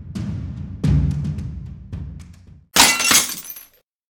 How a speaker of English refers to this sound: that glass smash right there was when Matt Long said something you shouldn't have said